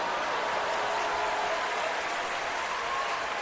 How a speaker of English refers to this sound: So we love, I'm gonna go ahead and hit the applause check for that because we love that.